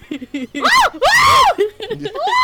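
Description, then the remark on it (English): A man's dying scream, the dying noises of Randy Perlman's character as he is killed with a chainsaw to the head: two loud, strained wails that rise and fall in pitch, the second longer and more anguished, with short choked vocal sounds before and between them. “Oh, wait, that's the Armin scream.”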